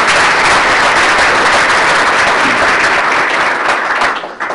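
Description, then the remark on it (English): A forum audience applauds the two participants after their opening statements, loudly and steadily, a dense wash of many hands clapping, holding level for a few seconds before starting to taper off at the end. “And for our audience, let's give them one more round of applause right now for their participation, and then hold any additional applause to the end of our forum today.”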